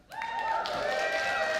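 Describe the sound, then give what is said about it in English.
A sudden swell of audience applause rises within a fraction of a second and holds steady, with sustained cheering or whistling tones riding over the clapping noise and no talking. “Now, we've been doing an experiment for the last month by rousing swell of applause.”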